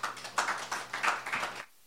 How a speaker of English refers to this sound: Ooh, the applause is for me,